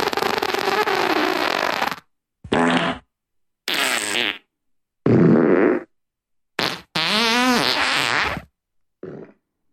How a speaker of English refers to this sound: That's me typing fart sounds into Spotify.